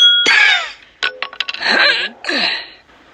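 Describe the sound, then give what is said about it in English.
A run of quick sharp taps sits between harsh, bright crashing bursts as a video game character uses a hammer to break open glass, a cartoonish game effect. It is loud, with no one talking. “Alright, so he could use a hammer, or he could use, like, a laser gun again to just open the glass.”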